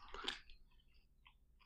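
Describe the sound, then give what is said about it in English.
Chewing Chewy Nerds candy with moist, smacking mouth sounds: a louder crunchy burst at first, then softer sticky clicks as the chewy candy is worked between the teeth, with no talking. “Also, I'm munching. Let me have some munches.”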